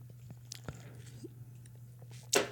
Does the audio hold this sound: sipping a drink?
yes